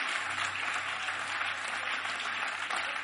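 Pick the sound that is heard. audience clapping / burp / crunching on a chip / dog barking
audience clapping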